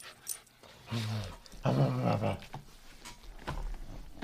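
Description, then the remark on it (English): A dog growls in two rough, drawn-out bursts, the second longer and louder, followed by quieter snuffling and low rumbling noise. “Dog. That sounds like some... Pooch.”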